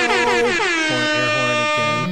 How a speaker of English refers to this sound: An air horn is like such a cop-out.